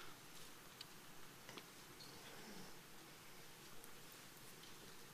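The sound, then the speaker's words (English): Many Bible pages flip at once as people turn to Romans chapter 1, a soft, steady papery rustle with scattered light ticks, with no one talking. “I hear pages flipping.”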